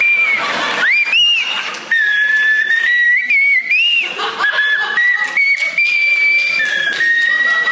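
Someone whistles a wavering tune, the pitch sliding between notes in a steady melody with brief breaths, and faint chuckling or breathy noises breaking in now and then.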